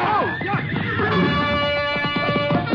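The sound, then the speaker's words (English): A frightened horse at a hitching rack of mounts rears and whinnies and squeals loudly, its shrill neighs rising and falling over a dense, clattering commotion for a few seconds. “Tuller lashed his horse and dove behind the other mounts at the rack. Frightened animal reared over and knocked Small into me before Clark could grab the bridle.”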